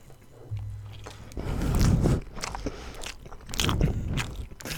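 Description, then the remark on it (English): Biting and chewing of a cheese coney topped with onion, mustard, hot sauce and cheese, with loud, wet, crunchy mouth sounds coming in irregular bursts. No one speaks. “I will be performing 30 seconds of cheese coney ASMR.”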